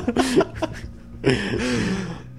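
A loud fit of coughing and sneezing: several quick, harsh bursts, a short pause, then a longer strained burst with a throaty, breathy edge, trailing off.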